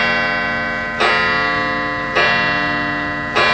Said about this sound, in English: Oh, my sister fixed the clock. Oh, no, Baba pulled up the clock.